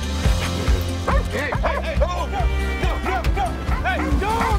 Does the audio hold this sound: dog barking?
yes